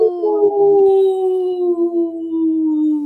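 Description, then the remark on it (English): A person imitates a wolf howl on the radio show Native Roots Radio Presents, one long sustained wail held loud for about three seconds, the pitch sliding slowly downward, with no other sounds around it. “we're always excited to howl with you”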